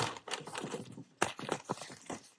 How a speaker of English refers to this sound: Wait, I'm going to open some drawers here. Wait. Wait. Wait, whoa.